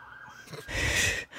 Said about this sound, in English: Sorry, I'm getting some sirens here. Drama in the neighborhood.